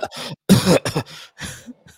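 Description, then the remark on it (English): A series of harsh coughs and throat-clearing bursts over a sound drop, the loudest in the middle, with short gaps between them and a fainter cough trailing off at the end. “That's our new thing, is we just cough over our own drops.”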